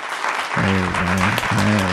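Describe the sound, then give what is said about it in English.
A brief burst of applause from a studio audience of about eight people, a steady wash of clapping that lasts about two seconds, with voiced cheers or whoops rising over it in two short bursts. “Wow, that's the first round of applause I've ever received.”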